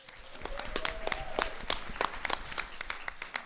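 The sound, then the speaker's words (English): A small audience claps steadily for a few seconds, a moderate scatter of sharp, bright hand claps with no voices over them. “So just clap when it's appropriate to me.”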